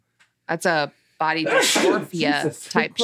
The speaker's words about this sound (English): Oh my God. Bless you. Bless you. Sorry, guys.